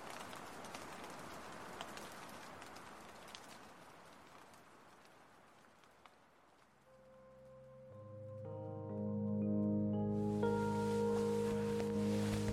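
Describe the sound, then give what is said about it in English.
Steady rain patters on a tent at night for several seconds, with scattered sharper drops, then fades as soft sustained music rises and takes over the second half. “The rain had stopped, but it seemed some water had seeped into the corner of our tent.”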